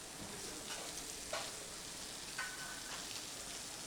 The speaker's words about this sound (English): It looks like it's just seared in a light golden brown. It's making a lovely sizzle.